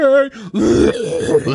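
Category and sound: vocal imitation, imitated cough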